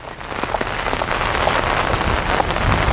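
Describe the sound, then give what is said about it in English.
Steady rain falls, a dense continuous patter of drops striking a surface, with a low rumbling undertone and no voices. “Hanging in the rain.”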